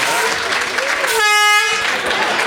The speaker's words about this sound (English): I'm getting an air horn.